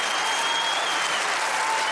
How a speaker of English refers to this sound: Folks, I'm not playing games. I'll stop the show. That's enough applause.